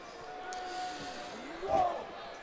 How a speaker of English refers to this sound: Is he doing Orton's thing? Or is he punching the mat?